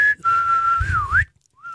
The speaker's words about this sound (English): Once we each do a whistle, sure.